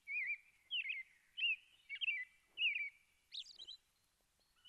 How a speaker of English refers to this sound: It's the robin, a bird that has been celebrated in many ways for a long, long time.